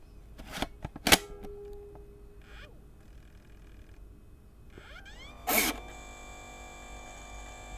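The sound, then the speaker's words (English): A zip disk is pushed into a zip disk drive connected to a Windows 10 computer, with a few sharp mechanical clicks, then a motor whirs up with a rising whine, another clunk, and a steady hum that continues. No talking. “But so I'm gonna go ahead and insert a zip disk for you, so you can hear what that sounds like.”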